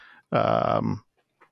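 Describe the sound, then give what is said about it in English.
A voice imitates gently tapping on a cheek puffed with trapped air, making one loud, buzzy sputter that lasts under a second, followed by faint breathy sounds. “There's going to be a little air that's like trapped in his puffy cheek. So it's like, just that noise.”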